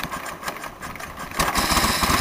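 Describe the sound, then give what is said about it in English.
A two-stroke Royal Enfield motorcycle engine runs with a rapid, buzzy putter, idling at first and then growing louder and harsher as it revs up partway through. “By the age of 14, she'd achieved her goal, her chosen bike, a two-stroke Royal Enfield.”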